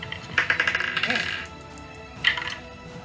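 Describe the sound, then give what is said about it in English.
Dice clatter across a hard tabletop in a bright rattle lasting about a second, followed by a second, shorter roll a moment later, rolled in a game to resolve a creature's scratch attack. “Incorrect dice, and I need two of these ones.”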